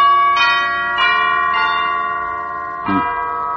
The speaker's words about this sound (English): Wow. Look at the size of this mansion. Tremendous. Ring the bell, will you?